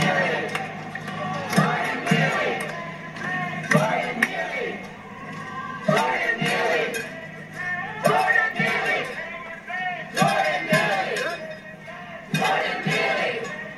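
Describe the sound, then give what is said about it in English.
A crowd of people shouting and yelling over each other, with loud overlapping voices rising in repeated bursts throughout, busy, with individual shouts cutting through the din. “A lot of celebrities in the crowd today.”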